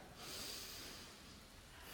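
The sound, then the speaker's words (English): A slow, deep breath drawn in and let out, an airy hiss that swells, fades slightly, then rises again. It is quiet, with no talking. “Take a breath with me.”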